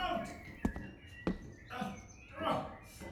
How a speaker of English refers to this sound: Four calling birds.